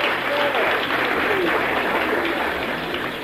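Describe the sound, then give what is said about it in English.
An audience claps steadily in sustained, dense applause for two people from Blackpool, at an even level throughout, with faint voices mixed in underneath. “Give them a clap, these two folk from Blackpool.”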